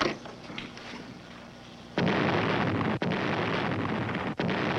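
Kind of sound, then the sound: sound effect, explosion sound effect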